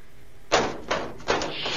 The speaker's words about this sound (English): Adric hates automatic doors. So does Nissa.